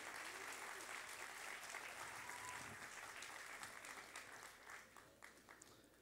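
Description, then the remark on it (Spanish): An audience at Iglesia Vertical breaks into sustained applause for the mothers-in-law, a dense wash of many hands clapping steadily and loudly for several seconds before gradually thinning out toward the end. “Damos un fuerte aplauso a la suegra, a la suegra.”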